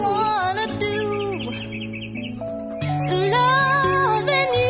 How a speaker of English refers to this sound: Is it the birds tweeting that you don't like about this song? It's actually the bird that I do like. Yeah, that's the only thing about it.